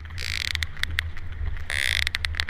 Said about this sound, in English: The cartilaginous clapper system is used to create a clicking sound that sperm whales use to see through echolation, and they use it to communicate with other whales. Here's what it sounds like.